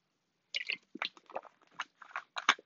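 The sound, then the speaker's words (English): Someone takes a sip of water, with a quick series of soft wet slurps and swallowing clicks over about two seconds, and no one speaking. “Let me take a drink of water because my mouth is dry.”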